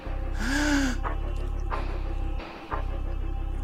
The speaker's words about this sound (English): She looks scared. The sound of her gasp awakes the rest of you.